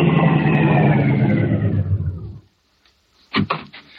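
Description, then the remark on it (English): A car engine roars loudly and steadily for a couple of seconds, then abruptly cuts off, followed by a brief pause and a few short, sharp clunks. “Car coming.”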